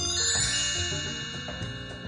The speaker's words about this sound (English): Do we have listener mail? Yeah. Well, let's do the listener mail chime.